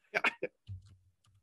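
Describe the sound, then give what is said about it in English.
A person slowly bangs on a computer keyboard while searching online for a phonetic spelling: a few slow, heavy keystrokes, three sharp clacks close together, followed by a low, muffled murmur in the background. “you can hear Bush typing just slow, but just banging on his keyboard”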